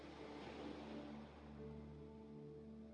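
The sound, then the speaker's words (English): Soft, steady wash of gentle ocean waves on the shore, quiet and continuous, with a sustained low musical drone humming underneath and no voices. “Gentle waves flowing over your feet.”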